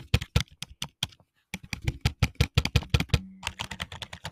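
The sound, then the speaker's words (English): Rapid keystrokes clatter on a computer keyboard, close to the microphone, in quick irregular bursts with a brief pause before the typing resumes even faster. “sorry, that's my keyboard. Sounds weird, what the heck?”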